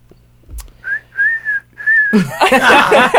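Three short, steady whistle blasts in quick succession, clear and fairly loud, followed abruptly by a burst of noisy commotion with voices.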